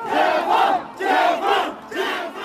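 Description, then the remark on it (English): A large crowd of protesters in the streets of Urumqi, Xinjiang, shouts in unison for an end to the COVID lockdown, loud rhythmic chanted bursts repeating roughly every second with brief gaps between. “But on the next day, crowds took to the street in Urumqi, shouting for an end to the lockdown.”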